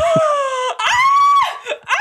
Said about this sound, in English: stop screaming. That's really embarrassing. Stop it. Oh my God, we're trying to play a game. It's really embarrassing.